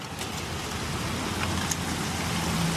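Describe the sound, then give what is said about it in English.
Heavy rain from a rainstorm in Chattanooga pours down steadily, raining sideways, a dense continuous hiss of water drumming on surfaces with a low rumbling undertone, loud, no voices. “You got welcomed by this rainstorm. Play that clip that Hallie took yesterday.”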